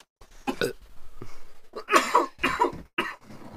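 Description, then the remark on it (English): A harsh coughing fit: several raspy, forceful coughs come in quick uneven bursts, with the loudest cluster in the middle and short gasping pauses between them. “I went so long without coughing. Just gotta let it out.”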